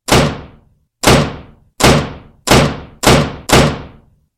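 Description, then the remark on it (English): Six sets of double doors in a hall slam open in steady succession, each heavy bang loud with a brief echoing decay before the next, no voices. “All 6 sets of double doors slammed open.”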